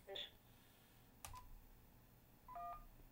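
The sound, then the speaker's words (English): Short electronic telephone tones of a call coming in to KJAG Radio sound in three brief bursts spaced across a few seconds, with a sharp click between them, all fairly quiet over a faint background hiss. “And we got somebody calling on the phone.”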